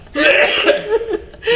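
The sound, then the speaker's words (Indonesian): A person coughs from smoking too much, a rough, throaty burst that lasts over a second, fairly loud, with a raspy, strained quality and no talking around it. “Kebanyakan rokok sih, ini batuk mulu.”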